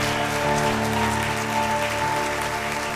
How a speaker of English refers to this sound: And if you believe that today, I want you to say thank you, Father God, by clapping your hands and say thank you for these folks today.